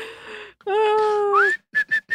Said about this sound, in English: Yeah. Let's do synchronized, harmonized whistling. Nobody wants to hear it whistling at any point.